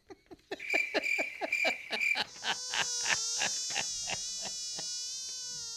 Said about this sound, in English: Is that a mosquito sound? Is that what that was?